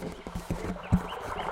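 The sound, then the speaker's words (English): A babbling brook at night, picked up as a microphone is moved toward it, trickles and gurgles steadily, a soft continuous wash of water with small irregular splashes and a few brief low knocks rising above it. “You can actually hear the babbling brook.”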